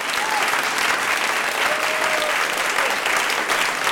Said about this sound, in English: First of all, I think I'm going to try and edit a round of applause into that dramatic reading of the game, because that was very, very well read.